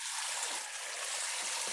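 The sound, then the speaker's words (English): A steady hiss of water spraying continuously from a portable shower head run by a water pump, broad and airy, with faint dripping flickers underneath and no voices. “with a shower head and a water pump that's dripping its water”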